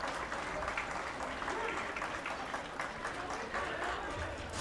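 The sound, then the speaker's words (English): Wrestling fans clap steadily during a match, urging the wrestler Warhorse to get up after he hits the floor. The applause is dense and continuous with a murmur of voices mixed underneath, sustained at even loudness throughout. “And the fans start clapping for Warhorse to get up.”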